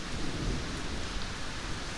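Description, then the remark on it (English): Steady rain hisses across the whole stretch while a low, rolling rumble of thunder swells underneath, a continuous stormy wash with no voices. “Oh, rain, wind, thunder, fire are my daughters.”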